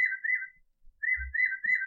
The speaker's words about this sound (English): That's the Audubon clock in the background chirping. A new bird call for every hour. Perfect. So we got 11 a.m. right now.